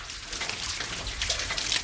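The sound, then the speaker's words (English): Water splashes and gushes steadily from a light double-action hand pump in rural Colombia, which lifts a plastic-tubing pipe over a stationary piston as it is worked, with brief surges in the flow, moderately loud, with no voices. “Instead of raising and lowering a heavy piston inside a pipe, this one lifts the piston stationary and lifts the pipe made of plastic tubing. I try it.”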